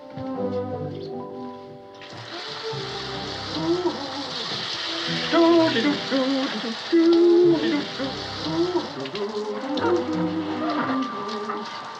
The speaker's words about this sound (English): I usually sing a medley of old favorites when I'm in the shower.